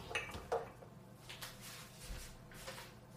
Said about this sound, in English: Perfect. Cover it. Perfect, this matching lid.